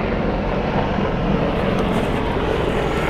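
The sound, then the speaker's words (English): A patrol helicopter drones overhead, a steady, fairly loud rumble of engine and rotor that holds constant for the whole stretch with no voices. “There's a helicopter above us is patrolling because missiles have been hit.”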